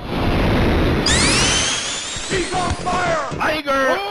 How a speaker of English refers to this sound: So that was a slap and then just a series of different fireballs that I've enjoyed throughout life. And then a series just, of different great fireballs.